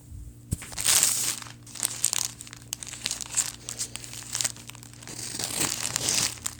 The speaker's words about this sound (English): There, cut through the label. Oh, it's a zipper bag. I'm glad I cut through the label instead of the bag. It's got a zipper closure.